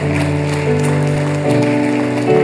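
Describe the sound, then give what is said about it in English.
An audience section claps steadily for people counted with their hands raised, in a dense, rain-like patter while sustained organ or keyboard chords hold and shift underneath, all at a fairly loud, even level. “In this section right here, if you see someone with their hand raised, I want you to clap your hands in this section right here.”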